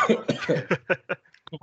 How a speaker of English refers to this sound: My coughing will take the place of a bad connection.